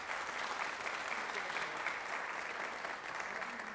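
Steady, sustained clapping from an audience, a dense crackle of many hands at an even loudness throughout, with no voices standing out.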